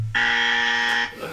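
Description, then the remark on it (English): A single loud, harsh game show buzzer blares for about a second, a steady flat electronic drone with rich harmonics, cutting off abruptly. “Boring! Generic. Ye old generic buzzer.”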